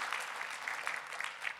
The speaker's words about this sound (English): Come on, applaud. You're getting it. You're getting it.